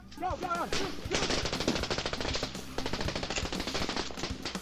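Sustained rapid bursts of machine gun fire crackle steadily for several seconds, loud and dense, with a brief wailing cry just before the shooting begins; gunfire at night in 1997 as rebels attack a town in northern Sierra Leone.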